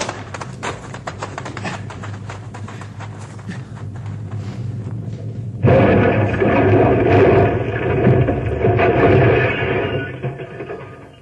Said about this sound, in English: Second rock came rolling down the mountainside and hit our car and flattened it. We get out just in time.